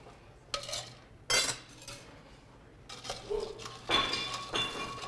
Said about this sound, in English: Half ounce of that. We have got our Old Forester rye whiskey. 2 ounces of that. Give that a quick stir.